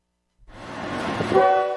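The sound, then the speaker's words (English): A single train horn blast swells in after a brief moment of silence, its loud harmonic tones rising to a steady blare over rumbling rail noise, with no one talking. “Pull that handle, baby. The Lane Train.”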